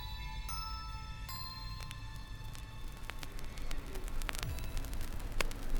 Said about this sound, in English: I'm hearing static. There's a voice echoing. You hear that?